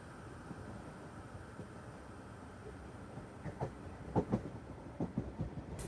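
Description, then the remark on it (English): A train beside the water on a warm day with a light breeze rumbles steadily along the rails with a low, continuous drone, then a series of sharp clacks and knocks picks up in the second half, growing louder and more frequent. “As you board the train, you look out across the water and notice a windsurfer gliding in the distance.”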